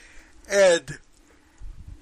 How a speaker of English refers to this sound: And you can tell what hour it is because I'm yawning.